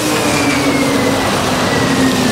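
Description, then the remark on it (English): A Rosenbauer all-electric fire engine, an Austrian-made concept fire truck, runs with a steady, loud hum and a high motor whine that drifts slightly lower in pitch, continuous, with no voices. “the Rosenbauer all-electric fire truck, which is the world's first all-electric fire engine.”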